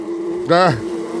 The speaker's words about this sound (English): Those are real bees. Oh, these are real bees. We've got the genuine article here.